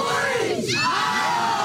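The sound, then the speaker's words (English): A large crowd of friends, family and supporters cheers loudly, welcoming home Hamilton's Westside Little Leaguers, the Ohio team from the Little League World Series finals: a dense, sustained roar of many overlapping shouts and high-pitched yells that stays at full volume throughout the short burst. “Hamilton's Westside Little Leaguers came home to a cheering crowd of friends, family, and supporters.”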